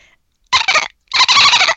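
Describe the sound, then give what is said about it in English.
A person imitates a dolphin with two loud, high-pitched squeaky chattering bursts, a short one followed by a longer one after a brief pause. No words are spoken. “You have to make the dolphin noise.”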